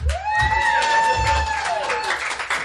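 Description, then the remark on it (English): An audience claps steadily for the night's performers while one high cheer rises, holds for about two seconds, then slides down, with scattered shouts mixed into the dense applause. “All right, let's give it up again for everyone that performed tonight.”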